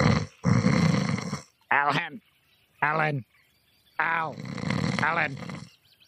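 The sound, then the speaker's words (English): A person imitates loud snoring, with rough, noisy inhales alternating with short voiced, wobbling snorts in an uneven rhythm, several times over. “The wagon is dark inside. Windows are closed, and you hear snoring.”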